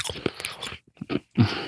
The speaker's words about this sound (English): He's still chewing the bracelet.